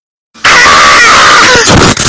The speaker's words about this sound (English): And you have a right big scream.